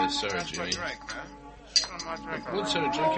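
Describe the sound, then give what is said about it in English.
A single bright clink of glass rings out midway, sharp and short, amid a steady bed of voices chattering throughout. “Hey, look up for my glass.”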